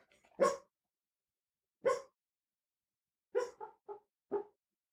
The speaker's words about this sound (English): Oh, my dog's having a dream. She's barking at something in her dream, if you can hear it.